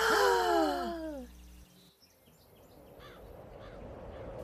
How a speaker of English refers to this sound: But when Baba turned to reveal what they were carrying with them, both Taffy and Seely gasped in total shock.